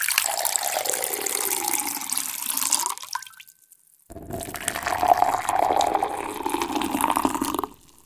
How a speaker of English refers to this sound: So here's a test. Can you tell the temperature of these two drinks just based on the sound they make while they're being poured?